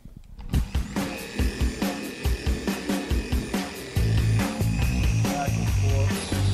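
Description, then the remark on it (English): A rotary polisher with a pad whirs steadily as it cuts car paint with cutting compound, moved slowly and generating a lot of heat, a loud, continuous motor whine with a rhythmic low pulsing beneath it that grows heavier partway through. “And the heat generated with the cutting compound and the pad is what is gonna take this paint down.”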